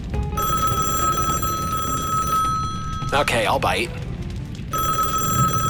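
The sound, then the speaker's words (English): A telephone rings loudly and steadily for several seconds, pauses briefly while someone speaks a short line, then starts ringing again. “When did we get a phone?”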